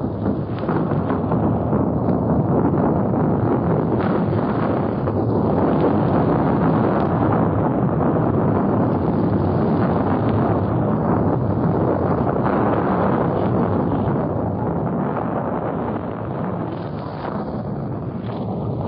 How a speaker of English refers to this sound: Of a recording made at the Moro River front today during a tremendous shoot on the enemy positions.